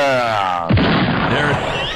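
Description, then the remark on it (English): A tonal, voice-like sound builds for a moment, then a loud explosion sound effect introducing a feature segment bursts in with a deep thump and a rough, rumbling roar that carries on to the end. “It's just an introduction of the feature, the West Coast bum explosion.”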